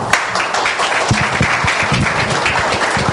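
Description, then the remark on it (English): An audience at a talk on addiction breaks into steady applause as the speaker is welcomed, many hands clapping at once in a dense, continuous wash of sound that holds loud and even throughout, with no voices standing out. “And walk in, hey, Dad, and applause like that.”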